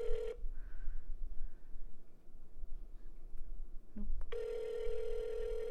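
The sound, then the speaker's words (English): A phone line rings back through a speakerphone: a steady, tinny electronic tone cuts off, leaves a long quiet pause with faint line hiss, then starts up again. “Well, it's ringing.”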